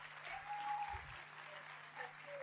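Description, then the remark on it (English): A crowd applauds steadily, many hands clapping together in a dense, continuous wash of claps that holds at an even loudness throughout, with a faint steady hum underneath. “Just like, I think it's a good place to clap your hands.”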